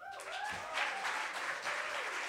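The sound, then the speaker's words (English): A crowd applauding the roasters as they are called onto the stage at a roast, with dense, steady clapping that stays loud and even throughout, with a faint whistle-like tone sliding through the start. “So let's give everybody a big old round of applause.”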